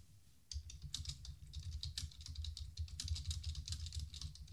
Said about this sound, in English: I'm just typing here.